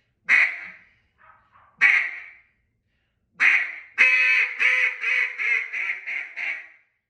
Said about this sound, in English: Typically, it's three quacks and then just a big duck.